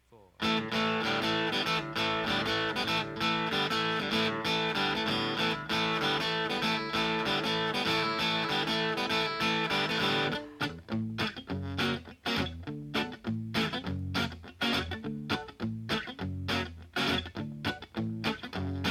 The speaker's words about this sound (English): So before we start talking about these two bad boys together, let's hear a little mashup of these monster mashes.